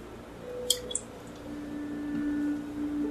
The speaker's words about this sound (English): And then you hear the as all the rain begins to pour. A steady shower pouring into the water around the small ramshackle shed, hitting the old wood on top.